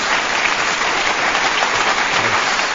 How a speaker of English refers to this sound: We don't bring out the applause for just anybody, Robert.